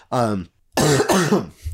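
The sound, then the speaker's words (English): A person with congestion coughs and clears their throat: a short rough burst, a brief pause, then a longer, harsher fit of congested hacking. “I tried holding back coughs the entire goddamn time with this congestion.”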